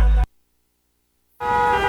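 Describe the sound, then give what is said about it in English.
A short, loud burst of traffic noise with blaring car horns cuts off into a second of silence. Then the honking and road rumble return just as loud and keep going. “Looking for something to take your mind off this traffic?”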